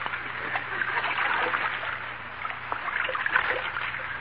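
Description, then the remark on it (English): Water sloshes and trickles steadily as a canoe is paddled along, a soft continuous splashing with faint paddle strokes, no voices, and a low steady hum beneath, in the radio show Fibber McGee and Molly. “Canoe Trip”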